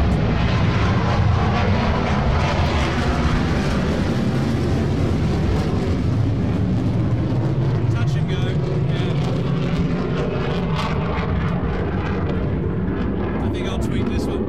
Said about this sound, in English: So I'll be tweeting that one as a couple of F-111s showing off.